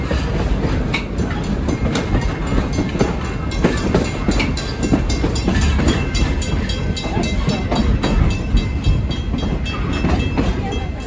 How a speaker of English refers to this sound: I just caught a glimpse of the front of the train way down there. So we're close to the front of the train. I think we're about four or five cars back.